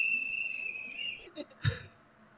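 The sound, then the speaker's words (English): A shrill handheld whistle, handed out to the crowd at an Australian rally supporting whistleblower David McBride, blows one long steady note for about a second and fades, then a short burst of crowd noise follows amid a quiet outdoor gathering. “And if you don't already have a whistle, come forward and grab one, please.”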